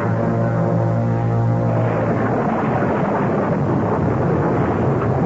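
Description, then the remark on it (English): A loud, continuous rumble of thunder rolls through a storm, with deep low tones in the first couple of seconds giving way to a broad, noisy roar of wind and rain. No voices are present. “I feel terrible dragging you out in the storm.”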